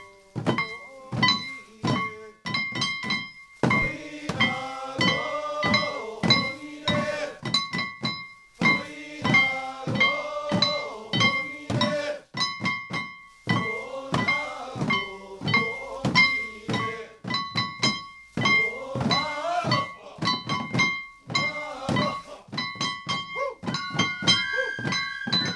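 A man lifts his foot and stomps it down again and again in an old ritual of singing and dancing: a steady, driving rhythm, each thud landing over a bed of sustained, ringing melodic tones that rise and fall throughout.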